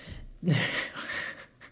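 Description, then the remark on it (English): A voice imitates heavy panting, a loud, breathy huff lasting about a second that starts with a throaty grunt and fades out, with no talking around it. “I think the breathing sounds are timeless.”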